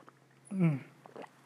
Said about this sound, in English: Just want to sip my tea a little bit because my throat's getting dry.